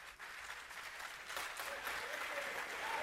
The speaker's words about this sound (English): Yeah, let me get my applause. Yeah.